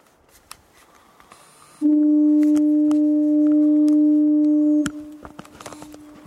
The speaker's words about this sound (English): Just that foghorn sound and nothing more. Oh, it's just, it's damp, it's foggy.